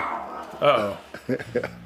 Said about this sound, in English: Uh-oh. Oh. See, there we go. Dog.